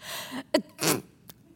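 A single sneeze: a breathy inhale with a sharp catch, then a loud noisy burst of air, followed by a brief faint click. No one speaks.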